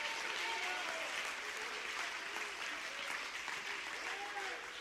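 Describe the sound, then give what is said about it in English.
A church audience claps hands to praise the Lord in a steady, dense wash of applause lasting the whole stretch, with raised voices calling out faintly underneath. “Would you clap your hands and magnify the Lord?”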